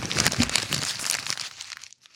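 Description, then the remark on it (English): Crinkling and rustling of a printed sheet of paper with jotted ideas being crumpled, a dense burst of crackles for about a second and a half that tapers off into near silence. “This is that piece of paper.”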